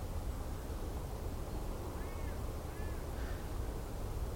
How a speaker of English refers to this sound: Over the River Aire. It's just a few ducks now. settling down for their roost underneath the bridge at Gagath.